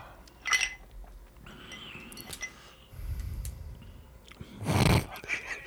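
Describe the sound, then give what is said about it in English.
Clinks and taps of a glass being handled as a man fishes a cherry out of it, a few sharp knocks scattered among soft scraping and rustling, with one louder rattle near the end. “I'm getting the cherry from my glass here.”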